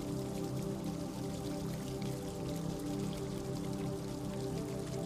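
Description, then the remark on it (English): Water trickles and patters steadily from a stone fountain in a moonlit courtyard, a continuous, even splashing with fine droplet detail and no voices, unchanging throughout. “In the center of it, there is a tranquil fountain, and you can hear the sound of the water trickling soothingly.”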